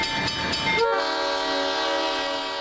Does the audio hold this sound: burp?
no